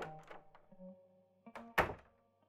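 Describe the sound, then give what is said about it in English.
Low creaks and groaning tones of a large walking house lowering itself to sit down, ending in one loud, heavy thunk as it settles, with a brief rattle fading after. “Sorry, can you tell your house to sit down? I don't think I can climb up to the door with my leg.”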